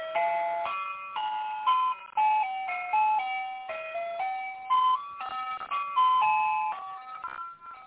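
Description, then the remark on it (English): A tinny electronic ice cream truck jingle plays a steady, bouncy melody of bright stepped notes, loud, running continuously with no talking. “I'm in the ice cream truck right now.”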